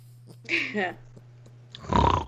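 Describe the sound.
Snoring from a person: a short, nasal, wavering voiced breath, a pause, then a louder, rough, rumbling snort with a steady low hum running underneath.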